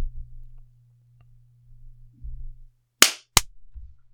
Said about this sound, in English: You want to clap at 48? Just a sec. Sure. Okay. I missed the 48, but I can do a clap now. Yeah, that's fine.